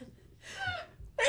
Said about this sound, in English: doing the cutest little sneezes. Do you love her sneezes?